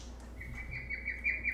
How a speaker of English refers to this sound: Sorry, that's my bird call.